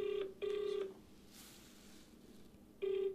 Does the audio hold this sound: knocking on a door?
no